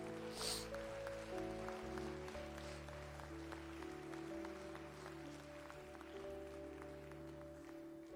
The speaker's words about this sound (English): Amen. Come on and give the Lord one more hand clap of praise.